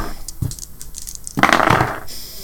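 Dice are rolled for awareness rolls, clattering and tumbling across a hard table, starting with scattered light clicks and swelling into a busier rattle before settling. The sound is moderately loud, with no voices.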